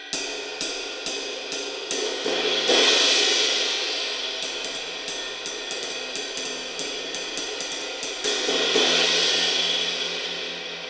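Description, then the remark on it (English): The small, low-pitched bell of a 703 jazz ride cymbal struck repeatedly in a steady rhythm, each ping layered over a bright, shimmering wash, with two heavier accented hits that swell the ringing; no voices. “Small bell. It's kind of low pitched.”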